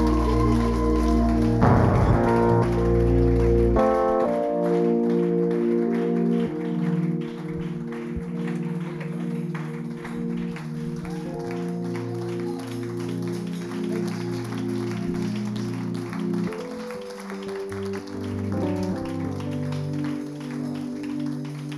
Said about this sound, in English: Hallelujah. Are you sure you were clapping or you were learning how to clap? Let your clap measure your expectation this morning.